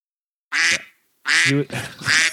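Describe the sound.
A duck quacks loudly, three harsh, nasal quacks in quick succession with a brief pause after the first, no voices around them.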